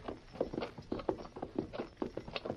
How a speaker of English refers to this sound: Lead your horse away from the camp, Tonto.